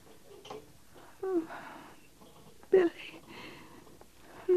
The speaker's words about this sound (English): She's breathing quiet enough. Too quiet, Captain? I don't think so.